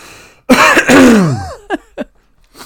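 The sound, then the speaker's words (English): A loud, rasping throat clearing from a tickly cough drags on for about a second, followed by two short, sharp coughs in quick succession, with no talking. “oh God, I've got your tickly cough now.”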